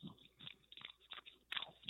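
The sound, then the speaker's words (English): A person chewing gum: moist chewing with several soft smacking and squishing bites in an uneven rhythm and a sharper wet click near the end; no voices. “That was like a chew. Yes, yeah, I'm chewing on some gum.”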